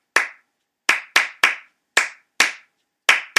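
Crisp hand claps, layered one over another, land in an uneven, syncopated pattern, some spaced apart and others bunched in quick pairs, like overlapping rhythms interlocking. About eight claps, with no voices or other sounds.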